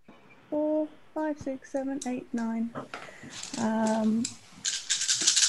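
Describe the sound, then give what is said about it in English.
Nine dice rattle and clatter in a bursty shake, rolled for a survival check in a tabletop game, over and after someone talking, with the rolling noise growing stronger toward the end. “Okay, 9 dice in survival.”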